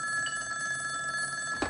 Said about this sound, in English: So speaking of phones, the phone rings.